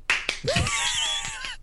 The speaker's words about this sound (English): All right, so 1, 2, 3, 4, 5, 6. So let's get 7 claps ready. 3, 2. God, 1.